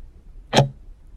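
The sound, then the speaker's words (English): A single crisp clock tick in a classroom, fairly loud, standing alone against a faint low background hum with no voices. “Clock was ticking.”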